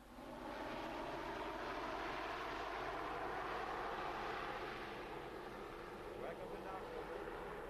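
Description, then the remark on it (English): An Aer Lingus Short 360 turboprop commuter plane drones loudly and steadily as it comes in to land at Knock Airport, its engine roar holding at a constant pitch for several seconds with a slight rise near the end. “And so, on Friday last, October 18th, after 5 years of controversy, the first Aer Lingus plane, a short 360 commuter, was able to touch down at Knock Airport.”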